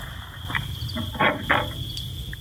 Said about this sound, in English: You hear that? I heard that. That sounded like a coyote right here, dude.